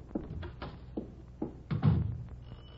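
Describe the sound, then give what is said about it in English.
A series of dull knocks on a wooden door, about half a dozen uneven raps, with a heavier thump near the end and no voices. “Will you open the door?”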